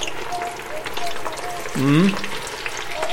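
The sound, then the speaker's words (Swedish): Steady crackling and sizzling of fennel deep-frying in heavily bubbling oil for about 2 minutes, continuous, with a brief voiced sound breaking in partway through. “Men du, då ska den här frityrkokas då i cirka 2 minuter. Och det bubblar så mycket så att vi har ingen egentligen koll på vad de där har för färg.”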